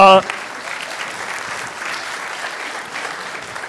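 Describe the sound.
An audience breaks into steady applause, a dense wash of many hands clapping that holds evenly for several seconds after a brief voice at the start.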